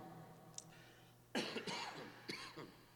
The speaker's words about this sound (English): Excuse my cough.